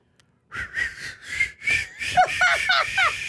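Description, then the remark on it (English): Someone tries to whistle but produces mostly breathy, airy blowing, a string of rapid puffs with thin, wavering tones that crack and slide instead of forming a clear whistle. “I can't whistle.”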